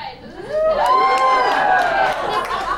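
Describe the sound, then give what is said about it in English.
An audience erupts in clapping mixed with loud cheering and whooping voices, a sustained burst of crowd noise that swells quickly and stays steady for a few seconds. “That is a good amount of clapping.”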